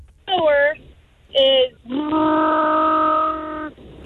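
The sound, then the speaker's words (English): A voice imitates a motor engine: two short, wavering vocal bursts, then a long, steady droning hum held for nearly two seconds, fairly loud and alone with no talking. “To win this, all you have to do is do two different motor sounds.”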